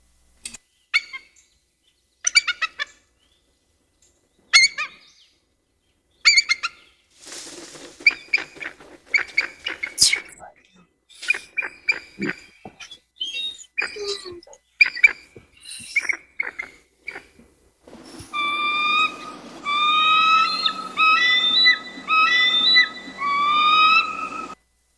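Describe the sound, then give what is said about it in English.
Bald eagle calls: bursts of high, thin chittering whistles and squeaky piping notes, repeated in uneven phrases, then a longer run of rapid, slightly harsh whistled chatter near the end. No voices. “So here's the bald eagle.”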